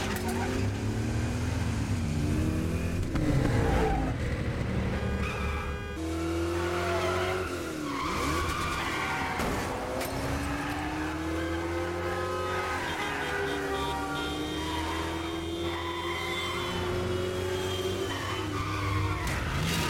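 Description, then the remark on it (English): An old V8 muscle car that drives like a 1970 Chevelle roars and revs loudly, its engine pitch climbing and falling while tires squeal and skid almost continuously as the driver struggles to keep control, with no one talking. “It doesn't drive like a new car. It drives like a 70 Chevelle.”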